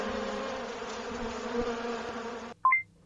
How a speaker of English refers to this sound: Bee would have been the correct answer.